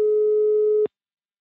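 A single steady telephone ringing tone of an outgoing call to national team coach Muri, one clear hum-like beep lasting under a second and then cutting off abruptly into silence, with no voices.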